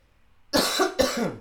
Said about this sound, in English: God damn that lingering cough.